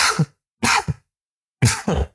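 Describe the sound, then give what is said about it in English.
Three sharp, noisy sneezes in quick succession, each a brief breathy burst with a little catch before it, separated by short silences and no talking. “Sneeze interruption.”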